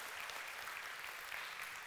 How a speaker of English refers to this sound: Can we give a hand clap of praise to our God? That's who He is.